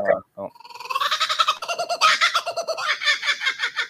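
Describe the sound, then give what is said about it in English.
A call from a native Australian bird, kookaburra-like: a loud burst of rapid, rolling cackling notes that speeds up into a chattering laugh, heard on its own without talk. “That was a cuckoo bird or a cuckoo bird? That was a cuckoo bear. It's the native indigenous bird of Australia.”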